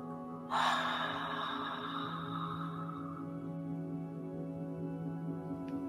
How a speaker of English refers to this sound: Deep inhale through the nose. And exhaling out the mouth.